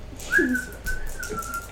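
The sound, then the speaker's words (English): A person whistles, a short rising note that slides into a longer, wavering tone held for over a second, with faint background noise underneath and no talking. “Are you whistling to your dice?”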